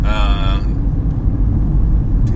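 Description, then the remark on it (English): Steady low rumble of road noise inside a moving single-gear car, loud and constant, with a brief higher tonal whine at the start that fades out. “Also, I have no idea how much you can hear right now with the amount of road noise this thing is putting off.”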